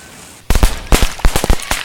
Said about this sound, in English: Oh well, let's explode these fuckers. Wait, are these just firecrackers?